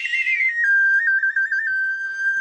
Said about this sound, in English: We're actually only doing answers in whistle form only, so you are all set.